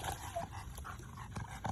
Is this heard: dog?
yes